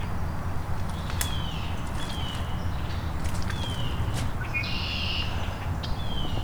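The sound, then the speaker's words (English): A yellow-rumped (myrtle) warbler calls with several thin, high chirps and a brief buzzy trill, fairly faint over a steady low rumbling background noise, with no one speaking. “Yes, I'm pretty sure that's myrtle warbler or yellow-rumped warbler.”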